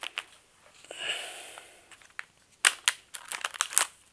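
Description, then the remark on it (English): A crinkly bag of sriracha-flavored cricket snacks from Exo is pulled and fumbled open, with a soft rustling stretch followed by a run of sharp, loud crackling crinkles, no one talking. “The bag is slightly challenging to open.”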